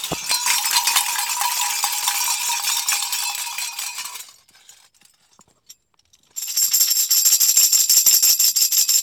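Many small bells jingle and clang in a dense, bright metallic shimmer, fall silent for about two seconds, then burst back in with a higher, ringing tone. No voices.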